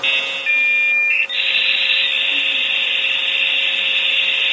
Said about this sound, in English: This is my favorite song. It's called 56K Bod Modem for 43 minutes.